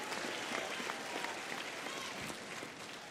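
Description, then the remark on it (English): An audience claps steadily for Jesus in a dense, continuous wash of applause, with scattered voices shouting out over the clapping throughout. “Could you give Jesus a big hand clap? Somebody give him a shout.”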